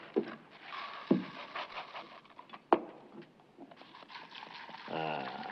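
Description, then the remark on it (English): A bowl of cereal soaked in beer crackles and fizzes with a steady, rapid popping texture, broken by a few sharper snaps. A brief voice sounds near the end. “Listen to that. Snap, crackle, and burp.”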